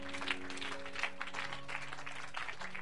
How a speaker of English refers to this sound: Clap your hands unto Jesus if you can.